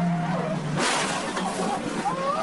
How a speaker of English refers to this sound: at 75 miles per hour, crashes into the corner of the concrete wall. Inside his race car, a camera captures the impact.